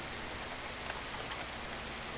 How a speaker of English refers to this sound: Above my head, 10,000 tiny mice tap dance on the tin roof. It's raining again.